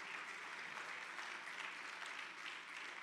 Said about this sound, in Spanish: Aleluya. Denle un aplauso bien fuerte al Señor con el corazón.